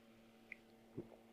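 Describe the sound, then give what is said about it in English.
A quiet sip of water by a speaker: a small click, then a soft wet gulp with a faint second swallow just after, against a low steady hum and no talking. “Hang on, I need a little bit of water here.”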